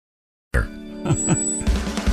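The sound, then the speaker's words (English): A telephone rings on the Bob and Tom Show, starting abruptly after a brief silence, its bright, steady tone pulsing with a few repeated bursts; fairly loud, with no voices. “You do that when the phone rings?”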